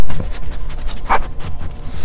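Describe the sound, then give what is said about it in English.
Gunner, a wild dingo dog in a radio studio, pants steadily, a run of quick, breathy huffs repeating in an even rhythm with no voices over it. “We have old Gunner in the studios today, the wild dingo dog, Gunner.”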